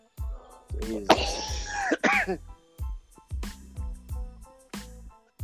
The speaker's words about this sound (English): you got that damn COVID cough, cuz.